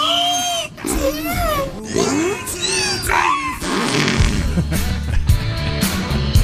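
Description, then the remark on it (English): A whale taught by a French scientist to talk vocalizes in a string of about five loud, speech-like syllables with gliding, wavering pitch, like a voice counting down, followed by a noisier, rougher stretch of sound. “And remember the French scientist taught the whales to talk, so to speak?”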